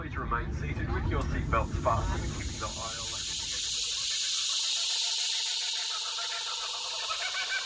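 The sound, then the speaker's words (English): Cicadas buzz on a farm at Picton, Australia, in summer, a dense, steady high-pitched drone that fills the whole recording, with faint voices underneath at the start before the insect chorus carries on alone. “Summer was when the property really came alive, with frogs and cicadas, blue-tongued lizards and red-bellied blacksnakes.”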